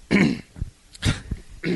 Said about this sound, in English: Don't cough right now.